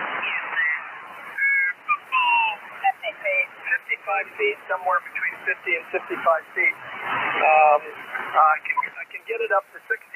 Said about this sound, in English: So we might hear a little static, but let me try here. First of all, I'll give you guys what static sounds like. So when there's nothing heard, well, let's go tune up to someone talking.